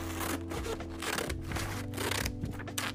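Scissors snipping in a series of short, crisp cuts at an uneven pace, with a low steady hum underneath and no talking.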